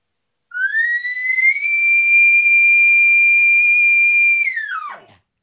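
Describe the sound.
An imitated elk location bugle, a simple bugle used to start an elk hunt: a loud, whistle-like tone climbs quickly, holds a long steady high note for several seconds, then drops off sharply at the end, with no other sounds.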